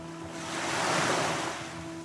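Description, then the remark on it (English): Rough sea waves surge with gusting wind in a broad roar that swells to a peak midway and eases off, over a steady low hum. No one speaks. “The Vow, Tintern Abbey, William Marshall's stormy crossing to Ireland.”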